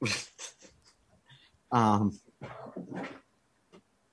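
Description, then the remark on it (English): A dog whimpers close by, one clear high-pitched whine standing out among a few shorter, softer whimpers and snuffling sounds in an otherwise quiet room. “No, so I locked the dogs back here in the He-Man / podcast room so they aren't barking constantly when somebody goes to get candy.”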